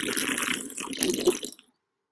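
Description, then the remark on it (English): Spindrift sparkling water, made with real squeezed fruit, pours and fizzes, a steady rush of liquid with bright crackling bubbles for about a second and a half before cutting off to silence. “Spindrift, baby. Sparkling water and real squeezed fruit.”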